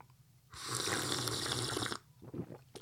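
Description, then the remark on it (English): A single loud, drawn-out slurp of a sip of coffee, airy and hissing, lasting about a second and a half, followed by a few faint, brief sounds. “Oh, excellent slurping action over there.”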